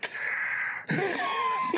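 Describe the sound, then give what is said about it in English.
A voice mimics a futuristic sci-fi respirator, likened to an iron lung: a steady, breathy hiss lasting under a second, then a second rasping, wheezy exhalation with a throaty edge, fairly loud, with no words. “That's a weird-ass respirator that people have in the future or in the galaxy far, far away.”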